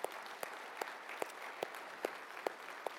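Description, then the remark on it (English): An audience at a church service applauds the young people: scattered clapping forms a steady hiss, with sharper claps landing in an even rhythm about twice a second. Fairly soft overall, with no voices. “Y'all give them a hand this morning.”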